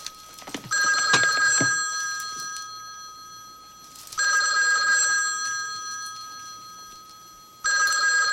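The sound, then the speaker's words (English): A telephone rings in three repeated bursts, each a bright, harmonic electronic trill lasting a couple of seconds with short pauses between, loud, with no talking. “every time he answered the phone, he delayed answering the phone so he could like take his notes.”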